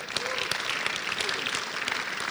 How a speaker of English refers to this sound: Clap for Jesus.